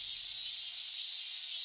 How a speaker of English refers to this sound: Japanese people call them semi. The English name for them is cicada. Oh, yeah, the cicadas can be so loud. It's a really cool sound when you get, like, the chorus kind of far off.